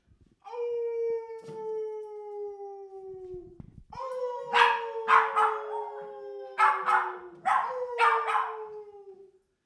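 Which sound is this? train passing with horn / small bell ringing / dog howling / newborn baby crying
dog howling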